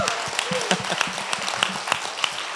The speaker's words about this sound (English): And can we give them a big round of applause? All right, come on.